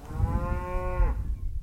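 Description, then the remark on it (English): A single cow moos in one long, steady, tonal call lasting about a second before cutting off, over a low rumbling outdoor background. “On most grasslands in North America, cattle have replaced bison as the grazers keeping the land healthy.”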